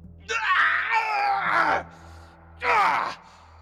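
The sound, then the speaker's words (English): A loud cry of pain echoes from somewhere in a large space with a collapsed stone avalanche: one long, wavering anguished wail, a brief pause, then a shorter second cry. No talking accompanies it. “You freeze as there is a sudden cry of pain that echoes from somewhere in this large space.”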